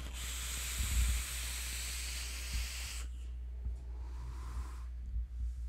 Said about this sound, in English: In fact, the liquid I'm vaping it with is something that's going to be released from Rescued E-Liquid